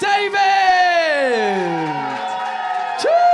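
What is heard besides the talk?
audience applause and cheering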